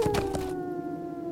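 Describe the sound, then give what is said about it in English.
A wolf howls in one long, steady, slightly wavering note that carries on after a brief burst of rustling noise at the start, with no voices present. “That sounds like a warg or a wolf.”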